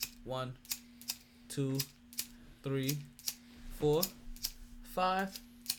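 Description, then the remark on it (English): Lighters flicked over and over, a quick run of sharp, dry clicks in an uneven rhythm, while a man's voice counts in short bursts between and over them, part of a 21-light salute honouring everyone affected during COVID. “I flicked my lighters, but it kind of worked because I ended up flicking them 21 times”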